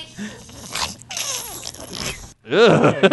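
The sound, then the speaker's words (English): A three-legged dog breathes hard with raspy, wheezing huffs and whiny rising-falling tones, broken by a brief pause before a louder, strained burst of panting at the end. “he's got three legs and he's fucking can't breathe”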